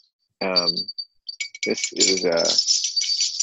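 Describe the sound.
A small shop door bell, from the screen door of a family tofu store where it rang as customers came in, jingles in bright, rattling shakes, starting in short bursts and then ringing steadily to the end, with brief voice sounds mixed in early and midway.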